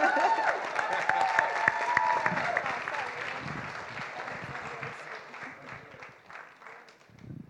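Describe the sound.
A crowd applauds with dense, steady clapping that gradually thins and softens over several seconds, with a few scattered voices mixed in and faint talk near the end.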